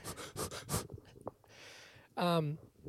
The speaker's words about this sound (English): So, breathe in air. Yeah, we're focus on your breath. When you're breathing in, just know that you're breathing in.